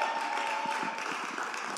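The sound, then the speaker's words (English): An audience applauds to show they have attended part of the Soul Care series, a dense wash of many hands clapping at an even, moderate level for the whole couple of seconds, with no voices standing out. “Can you guys just by, like, I don't know, round of applause, let me know if you guys have been here for any part of this series, Soul Care.”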